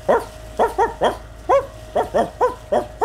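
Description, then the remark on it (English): A voice imitates a dog barking, giving about nine short, loud woofs in a quick, fairly steady rhythm, with no other talk. “will you do some of your best barking, please?”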